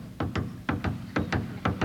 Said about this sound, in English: Now I take you to the opera house, where you hear the conductor's footsteps when he enters the orchestra pit. Here he comes.